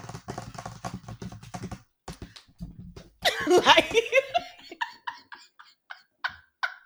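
Rapid typing on a computer keyboard clatters for a couple of seconds, then after a pause a burst of giggly vocal sound, followed by a series of short, evenly spaced electronic blips.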